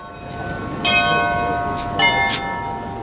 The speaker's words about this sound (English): And those are the bells of St. Michael's Cathedral